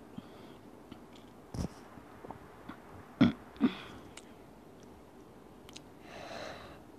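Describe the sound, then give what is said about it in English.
A couple of short, muffled burps come close together against a quiet background, with a few softer mouth and throat noises around them and no talking. “I'm not feeling well there. I mean, the burps are easily coming out.”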